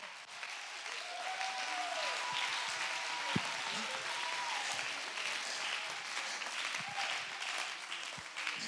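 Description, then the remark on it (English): An audience claps loudly and steadily for several seconds at the preacher's call to clap and shout, a dense wash of hand claps with scattered voices shouting and whooping over it. “Oh, clap your hands, all ye people, and shout.”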